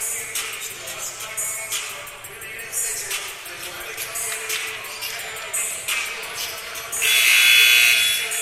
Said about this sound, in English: Buzzer sounds, and we're heading back to the floor.